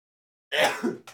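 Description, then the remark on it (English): A single sneeze bursts out after a moment of silence, fairly loud, trailing off with a short breathy follow-up sniff or exhale. “In 1 second, I have to sneeze.”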